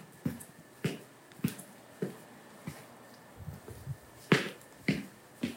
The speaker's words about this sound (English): It sounds like I'm stomping, but I'm not. I just held my phone down at the side and just tried to walk normally across this floor. I didn't try to creep. I didn't try to do anything. I just walked like I always do, and that's what it sounds like.